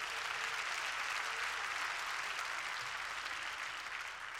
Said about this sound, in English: Would you clap your hands and praise the Lord?